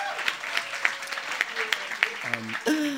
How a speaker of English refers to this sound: Wow, that was like a hostile round of applause. I never thought I would hear a round of applause laced with so much malice again.